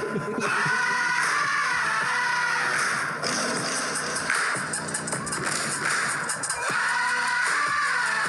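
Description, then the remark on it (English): Loud, dense metallic clanging of percussion banged on trash can lids, a fast rhythmic clatter of bright, ringing hits that continues without a break and with no voices over it. “Those trash can lids?”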